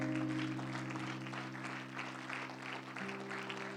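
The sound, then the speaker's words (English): An audience at a church service claps steadily throughout, a dense wash of many hands at moderate loudness, with sustained organ-like tones humming underneath the whole time. “Give him a hand clap.”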